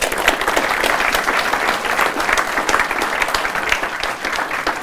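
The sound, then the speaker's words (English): A crowd applauds steadily for the student readers of a radio drama from St. Mel's College and Moyne Community School, many hands clapping in a dense, even patter that holds at a fairly loud level for about five seconds without talk. “So a little round of applause for that.”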